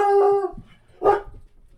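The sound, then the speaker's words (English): A dog barks twice as someone arrives home, first a drawn-out, tonal bark that trails off, then a short, sharp woof a moment later, clear with no talking. “Okay, there's the dog barking.”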